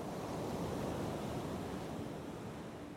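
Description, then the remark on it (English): Steady roar of ocean surf washing onto a beach, a continuous rumbling wash of breaking waves with a breezy hiss on top, no voices. “The beaches were pounded by waves that few knew how to enjoy safely.”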